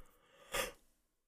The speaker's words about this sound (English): Holy cow. That was a big yawn. You can leave that in if you want.